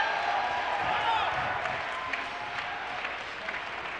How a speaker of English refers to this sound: Oh, let's clap our hands.